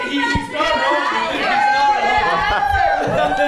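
A packed comedy club audience reacts loudly, a dense swell of many voices cheering and laughing at once, holding steady for a few seconds without letting up.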